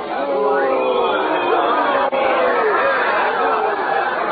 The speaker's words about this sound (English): Listen, my uncle, he's coming through the street now. They're cheering him. Cheering, is it? That's a strange kind of cheering, I'm thinking.